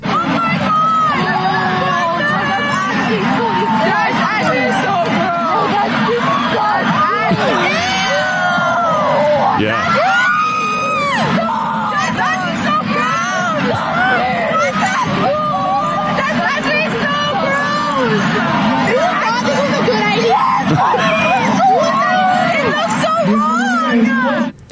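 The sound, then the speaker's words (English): A dense crowd of teenage students shouting and exclaiming over one another as they film on phones and react to students licking up marshmallow cream, a loud continuous babble with rising yelps and squeals throughout, no single voice standing out. “So students were actually filming it and reacting.”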